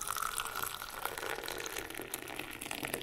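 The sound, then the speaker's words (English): A steady stream of liquid trickles and splashes continuously as Tregothnan tea, a strong English breakfast blend with leaves from India, is poured into cups, with no talking. “poured us cups of their strong English breakfast blended with tea leaves from India and a delicious Earl Grey with genuine bergamot oil from Italy.”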